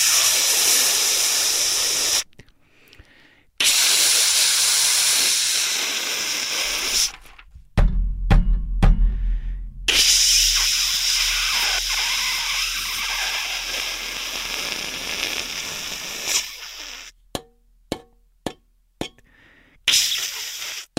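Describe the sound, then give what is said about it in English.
A steam radiator in New York City hisses loudly and steadily in long bursts, broken by short silences, with sharp metallic clicks and low knocking thumps in between. No one speaks. “That's my fucking radiator in New York City.”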